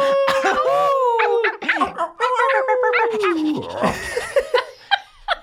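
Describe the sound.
Several people imitate dogs with their voices, overlapping loud barks and drawn-out howls in a rowdy group chorus, mixed with laughter throughout.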